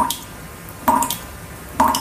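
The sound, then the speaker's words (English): A leaky faucet drips steadily, each drop landing with a clear plink roughly once a second, with quiet room tone between drops and no one speaking. “That would be a dripping faucet. That is a leaky faucet.”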